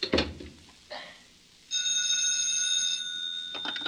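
A telephone rings with a bright, sustained electronic bell tone lasting a couple of seconds, preceded by a few brief clattering knocks.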